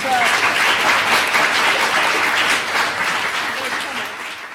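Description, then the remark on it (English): A full round of applause from an audience at an LSE event, dense and steady with many hands clapping at once, loud throughout and tapering slightly toward the end. “So look, should we just give a quick round of applause?”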